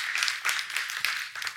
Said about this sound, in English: Go ahead, clap, yes.